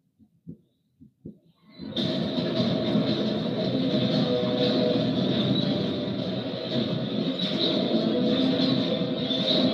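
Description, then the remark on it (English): A few dull thumps, then a freight train rolls in loud, a steady heavy rumble of wheels on track with a metallic ringing hum carrying on without a break, as someone jumps from freight train to freight train. “Jumping from freight train to freight train.”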